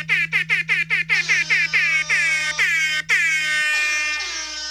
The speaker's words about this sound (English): Oh, the new ones, that is an improvement. More of a foghorn than air horn, but not bad.